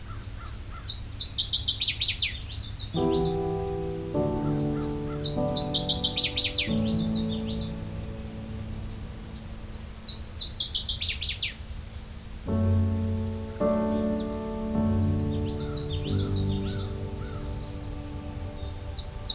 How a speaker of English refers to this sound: It inhabits the bogs and wooded swamps of Canada and the northeastern United States. Its song can be considered to be similar to the yellow warbler and is described as sounding like twit, twit, twit, sweet, sweet, sweet, choo, choo, choo.